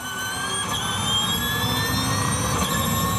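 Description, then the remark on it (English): A race car's high-pitched whine, several tones climbing slowly in pitch over a loud, steady rushing whoosh that holds for about three seconds with no voices. “It's a whine and a whoosh.”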